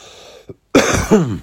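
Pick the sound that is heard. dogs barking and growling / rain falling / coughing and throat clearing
coughing and throat clearing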